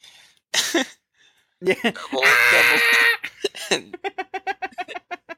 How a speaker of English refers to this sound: You heard the YouTube video with the goat?